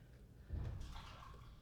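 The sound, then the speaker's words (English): Liquid pours into a coffee brewer, a soft thump at the start giving way to a steady, hissing trickle that runs on without pause. Nobody speaks. “Let me just pour this through.”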